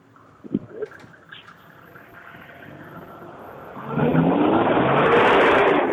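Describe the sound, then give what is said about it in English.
A car engine idles, then revs hard, surging into a loud, sustained roar with a rising pitch, recorded on a phone held up to the car's front grill while the driver revs it. A few clicks and handling noises come early on. “I'm going to hold the phone up to the grill while Johnny reps it”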